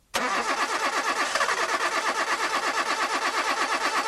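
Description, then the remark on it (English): A car engine cranks over and over without catching, a loud, steady rhythmic churning of the starter that begins abruptly and continues for several seconds with no voices. “Want to stop engine problems before they start?”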